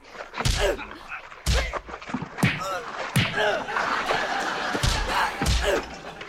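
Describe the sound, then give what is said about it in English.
A fistfight between two women: six or so sharp slapping thuds at uneven intervals as punches are blocked with the flat back of a hand, with grunting voices and rustling movement between blows. “Stop using the flat back of your hand to block my punches.”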